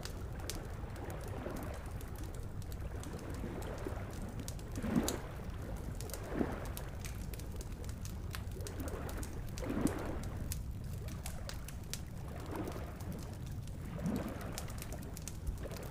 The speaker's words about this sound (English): It was dawn, and the early morning chorus of birds was in full force over the airwaves.